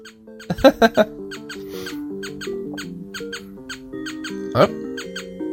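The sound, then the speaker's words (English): In a video game, a cartoon mouse runs out of a little mouse hole in a door and squeaks over and over in quick, high-pitched chirpy bursts, with a louder cluster at the start and another later, over steady tonal game music. “the mouse, a mouse came running out of the little mouse hole”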